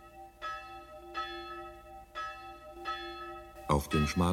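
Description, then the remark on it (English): A single passing bell tolls slowly from a small cemetery outside the town of Sopron, Hungary, knelling for a dead old man: four evenly spaced strikes with long ringing decay, before a man begins speaking over the fading resonance. “From the small cemetery outside the Hungarian town of Sopron, the passing bell knells for old Laszlo Bozo, dead for 3 days.”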